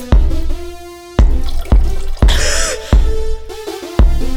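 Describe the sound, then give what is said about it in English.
Liquid chemicals are poured together in a science class, splashing in a series of bright, ringing plinks and drips, about eight in an uneven rhythm, fairly loud, with a bubbling gurgle midway and no voices. “In science class, I want you to grab some chemicals. I want you to pour them together, and then we'll make some science soup.”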